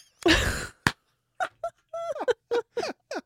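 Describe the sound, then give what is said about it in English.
A voice imitates a slide whistle: a breathy burst, then a string of short whistly tones, several swooping downward in pitch, in a quick uneven rhythm. “What if I do like a slide whistle?”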